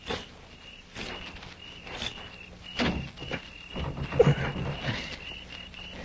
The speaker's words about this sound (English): Here, see. It's shut, all right. I'm going to try the door. If it opens, flip a couple of shots in.